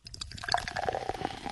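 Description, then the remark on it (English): A&W root beer poured steadily into a frosted glass over ice cream, a continuous gurgling splash with bright fizzing and crackling foam building up, no voices. “Put it in a frosted glass, crack open that A&W root beer. Get all nice and fizzy and just, the ice cream.”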